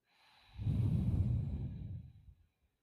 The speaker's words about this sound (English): And with that, Pretty Mental family, take in a deep breath with us.